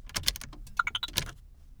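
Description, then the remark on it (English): Several quick button presses on an all-electric car's keypad, entering a secret code before starting the car, then a run of four short electronic beeps climbing in pitch, clear, with no talking. “First, I'm going to punch in the secret code.”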